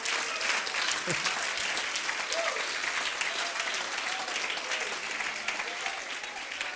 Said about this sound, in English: I think we ought to clap our hands to the Lord.